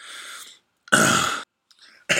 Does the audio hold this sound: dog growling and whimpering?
no